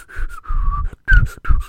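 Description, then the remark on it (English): Someone whistles a short, wavering tune, a few breathy notes in quick phrases separated by brief pauses, with no talking. “I can't whistle the best. I'm sorry about that.”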